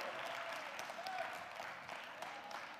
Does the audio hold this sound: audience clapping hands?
yes